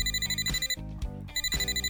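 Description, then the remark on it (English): An old dial telephone bell rings loudly, a rapid metallic trill in two bursts separated by a short pause, with no voices present. “Although the first cell phone was invented in 1973, they weren't very popular until the 1990s, so you probably made calls from an old dial phone.”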